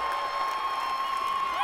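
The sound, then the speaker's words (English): A concert crowd roars and cheers in a steady, dense wash of noise, with a thin sustained tone ringing through it for the whole stretch. “The crowd is eating this up.”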